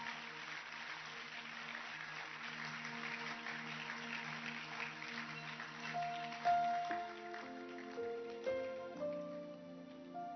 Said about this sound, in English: The sketch we watched this morning is one of the best messages on honor you will ever see. Let's clap our hands for this production.